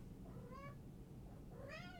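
A cat that wants to get out meows twice, rising, plaintive calls about a second apart, over a steady low background hum with no talking.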